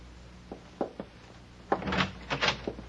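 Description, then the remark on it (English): A few soft knocks and clicks, then a door is pulled open with a rattling, scraping rush, moderately loud, with no voices. “Just open the door and walk right in.”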